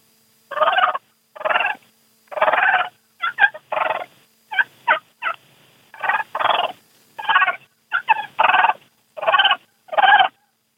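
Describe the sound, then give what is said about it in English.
A turkey purr imitated on a diaphragm mouth call: a series of about a dozen short, rolling, fluttery bursts with brief pauses between them, fairly loud, with no talking. “Purring on a diaphragm mouth call.”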